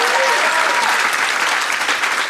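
An audience at a comedy show in Austin breaks into steady, loud applause, a dense wash of many hands clapping at once with a few faint whoops mixed in, sustained throughout, applauding if they did not attend Fantastic Fest.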